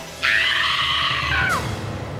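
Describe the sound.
A single high-pitched scream from one woman's voice, held loud and steady for over a second before dropping sharply in pitch and cutting off. No speech accompanies it.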